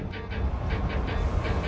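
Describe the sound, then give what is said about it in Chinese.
Steady low rumble of a subway train in motion, with a quick rhythmic clatter repeating over a continuous roar. No voices, just the enclosed, droning ride. “在地铁上。”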